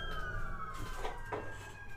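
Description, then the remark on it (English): Sirens of at least three police cars heading towards Bamberg wail steadily outside, a sustained high tone drifting slightly in pitch over a constant low rumble of traffic, with no one speaking. “Three police towards Bamberg.”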